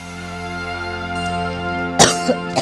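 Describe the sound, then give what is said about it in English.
A sudden real cough bursts out near the end, followed by a couple of smaller rasping catches, over a steady humming musical drone that runs throughout. “That was a real cough.”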